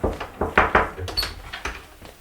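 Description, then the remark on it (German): The door to the headmaster's office opens, with a series of knocking clunks and shuffling steps as someone passes through; no one speaks. “Dann durch die Tür zum Direx.”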